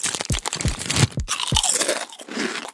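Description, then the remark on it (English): Loud crunching of potato chips, several sharp bites in quick succession followed by rapid chewing crunches, bright and crackly, with no voices. “Do you like loudly crunching potato chips and crinkling the bag?”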